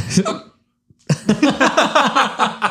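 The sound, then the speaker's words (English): A sudden hiccup that catches like a small cough, one short jolt of breath, followed by a brief silence and then a longer stretch of voiced, laugh-like vocal sounds. “It was like a cough and a hiccup.”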